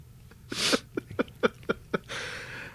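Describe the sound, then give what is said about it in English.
Heavy, labored breathing: a long gasping inhale, then a quick run of short huffing breaths, trailing into a steady breathy exhale. “the heavy breaths continued since you lived with Luke?”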